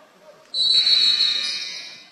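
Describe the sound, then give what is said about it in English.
A referee's whistle gives one long, shrill blast lasting over a second, loud, then fades into the low murmur of a gym crowd at a basketball game between Westwood and the Wycons, as Coach Gray sneaks in a substitution. “Now a whistle as Coach Gray sneaks in a substitution.”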